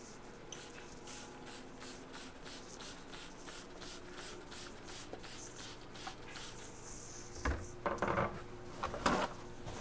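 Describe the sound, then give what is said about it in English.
A spray bottle squirts cleaner in a quick, steady series of short hissing bursts, followed by a few louder rubbing and wiping strokes across a kitchen countertop being cleaned. No one speaks. “All right, I'm gonna spray this stuff down.”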